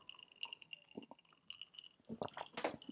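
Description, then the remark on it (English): Quiet sipping and slurping of iced coffee through a straw, with small wet clicks and squishy liquid sounds building toward the end; no one speaks. “Just have a sip of my iced coffee real quick.”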